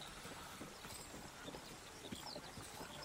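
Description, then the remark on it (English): Steady clip-clop of horse hooves on a hard surface as a column of mercenaries rides on into Solwick, a quick repeating rhythm of muffled knocks over a faint background wash, no voices. “And helps you back onto the horse. And the column continues into Solwick.”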